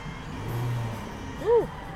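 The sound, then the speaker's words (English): A car drives past in a neighborhood with a low engine rumble, then gives one short, rising-and-falling rev that briefly grows louder before fading back into steady road noise. No one speaks. “That car has been driving around.”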